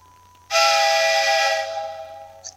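A loud, sustained train whistle sound effect, the train from Spirit Tracks played on a new buzzer, kicks in abruptly and holds for about a second and a half before fading, played alone with no talking.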